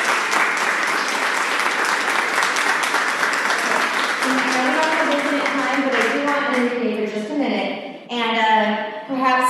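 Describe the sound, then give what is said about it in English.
At a DevOps Days event, an audience breaks into loud, steady applause, a dense wash of many hands clapping. Partway through, a person begins talking over the ongoing clapping, which carries on to the end. “And I think she really needs also a very large applause.”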